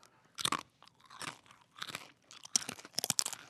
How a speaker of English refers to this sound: We gotta do better than crunching pretzels into the mic to drown out the sound of crickets.